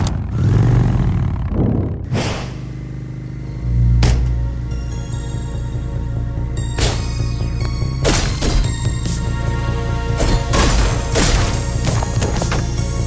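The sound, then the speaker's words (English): A video game motorcycle level: a steady, loud engine drone runs throughout while sharp crashes and impacts burst in every second or two, with no talking. “I think on this list only Blazing Chrome did it really well, which is, of course, a motorcycle level”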